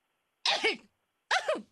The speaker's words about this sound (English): Sounds like you had an extra spice to it right now. You're coughing over my food.